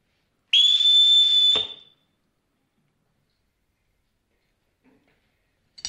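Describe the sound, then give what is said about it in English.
A single loud, shrill whistle blast, blown to call children, steady and piercing, lasting about a second before cutting off into silence, with only a faint click near the end. “Oh, I won't need to whistle for them, Reverend Captain.”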